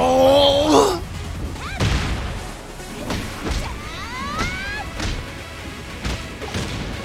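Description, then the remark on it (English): A female character's video game super move plays out: a brief tonal flourish, then a series of loud crashing impacts and whooshing swishes every second or so, ending in a big explosion with explosive blasts. “I like how her super's like, you know, outside of, you know, big old explosion at the end is trying to be all realistic, and then you have Lars who's just anime.”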